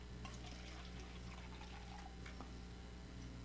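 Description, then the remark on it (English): Water pours steadily into a cup or glass for drinking, a continuous liquid stream with faint trickling, over a low steady background hum and no talking. “After singing all those songs, I need to get my whistle a little wet.”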